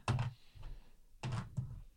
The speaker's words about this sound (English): A lot of dice being rolled.